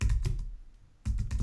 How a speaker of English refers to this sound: I'm typing in WFM into Google. WFM growth rate.